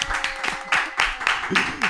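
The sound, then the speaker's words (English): A few people clap together on cue for a couple of seconds, a loose, uneven patter of hand claps, with a voice briefly murmuring underneath near the end. “Like for them, like they're like, oh, okay, let's clap.”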